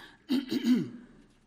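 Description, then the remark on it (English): A single rough throat clearing, a few gravelly bursts lasting under a second, then quiet with no talking. “Let's clear my throat.”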